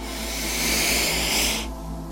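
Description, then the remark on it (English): A single deep inhalation through the nose during a guided breathing exercise: a steady, airy hiss that swells slightly and holds for about a second and a half, then stops abruptly, with no talking. “I want you to breathe in.”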